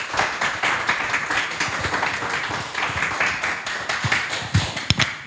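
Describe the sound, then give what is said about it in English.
A steady round of applause from a crowd, dense crackling claps filling about five seconds at a fairly loud, even level, with a few sharper claps standing out near the end. “Can we have a round of applause”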